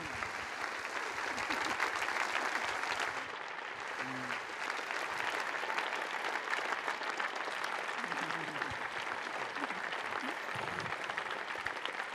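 Sustained applause from an audience, a dense steady clatter of many hands clapping for about twelve seconds, with a few faint voices murmuring underneath.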